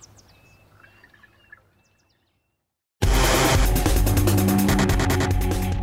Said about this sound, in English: The birds chirp.